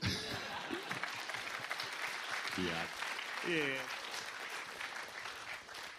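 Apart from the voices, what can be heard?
audience applause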